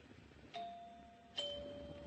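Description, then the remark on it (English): A house doorbell chimes a clear two-note ding-dong, each tone struck sharply and left to ring out and fade slowly, fairly loud, with no voices over it. “Nice chimes. Pretty.”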